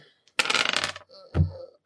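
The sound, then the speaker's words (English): Dice rattle and tumble across a hard surface in a quick burst of clicks, then come to rest with a final knock, a water die being rolled in a game. Fairly loud, with no voices. “Ice is the silver, and ghost is the, well, it's my water dice.”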